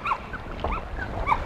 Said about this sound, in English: You can hear the dog.